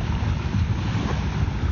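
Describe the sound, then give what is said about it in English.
Tiny waves wash in on the shore with a steady, low rushing roar and wind-like hiss, a continuous wash with no one speaking. “I sit here by the water and I hope you can hear that familiar sound of these tiny waves as they come crashing in.”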